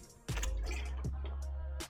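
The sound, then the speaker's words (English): Someone takes a swig of water from a bottle: a short clunk, then a low steady gulping stretch with a couple of soft swallow clicks, ending with another quick knock. “But before we answer the questions, let me get a swig of this water.”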